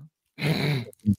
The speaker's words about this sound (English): You know, the reason we're on YouTube is we're not polished. We cough, we hack.